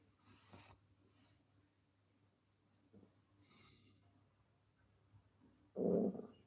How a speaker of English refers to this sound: The lawnmower in the distance.